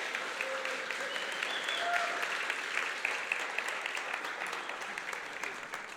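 Sustained applause from a church audience fills the whole stretch, a dense, steady patter of many hands clapping at even loudness, with a few faint voices and cheers mixed in.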